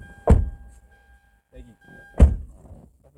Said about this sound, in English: Yeah, let me close this door.